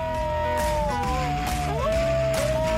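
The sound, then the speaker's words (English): New Guinea singing dogs howl together: several sustained, wavering tones at slightly different pitches overlap and slide up and down, forming a steady, eerie chorus that continues throughout. “Singing is really a kind of howling with a single note.”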